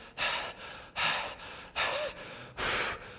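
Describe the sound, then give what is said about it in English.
A voice imitates heavy, angry breathing: four loud, rhythmic, forceful breaths in quick succession, harsh, with no talking. “Or maybe their breathing is the key.”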